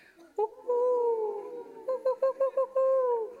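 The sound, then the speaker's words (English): An audience imitates owl calls with their voices: a long, wavering hoot, then a quick run of short hoots, ending on another drawn-out call. “Whoever's laughed really loudly over there, I want to hear your owl call.”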